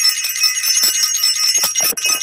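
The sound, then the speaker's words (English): A bell rings loudly and continuously as a shout-out for the self-invested class, its bright metallic clatter pulsing rapidly for about two seconds with no voices over it. “Want to ring the bell for self-invested.”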